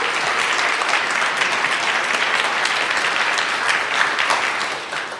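Sustained audience applause in a full hall at an event as a group of speakers is called onto the stage: a dense steady patter of many hands clapping at an even loudness for about five seconds, tapering slightly at the end. No voices.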